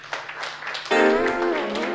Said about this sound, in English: Oh, clap for Jesus.